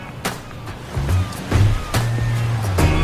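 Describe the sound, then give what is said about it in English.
Harbor water and small waves wash steadily along the Battery, a waterfront park on Charleston Harbor in Charleston, with a low engine rumble droning underneath and a few soft splashes breaking through the outdoor ambience. “Charleston Harbor here on the Battery, and you know, Charleston's great because you can have boat tours, you can go fishing tours.”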